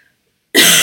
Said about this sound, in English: Excuse me, I need to cough again.